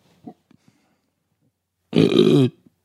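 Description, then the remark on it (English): A single loud, drawn-out belch from a man, close up, lasting about half a second with a rough, gravelly rumble, preceded by a few faint soft noises. “Your mother really appreciated your burps.”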